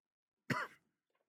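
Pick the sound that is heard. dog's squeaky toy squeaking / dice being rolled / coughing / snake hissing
coughing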